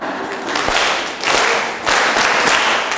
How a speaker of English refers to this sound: So, well, and our eighth graders also, who were their guide, why don't we clap for them? They have also done well.